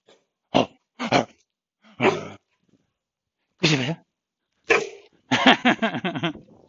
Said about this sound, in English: Anyway, very shy dog. Oh, yeah, pero tú quieres jugar, ¿eh? Tú quieres los dos. Tímida.